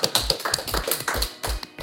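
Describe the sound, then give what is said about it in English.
A final round of applause from the audience at the end of an Open Data Institute Friday lunchtime lecture, many hands clapping in a dense, steady patter of sharp overlapping claps with no voices, holding at an even level throughout. “Just give one final round of applause.”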